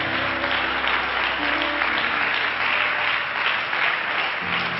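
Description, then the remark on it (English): An audience claps together in praise of God in the morning, sustained, dense applause, a steady wash of many hands with a low sustained hum underneath and no pauses. “Let's give God a great hand clap of praise this morning.”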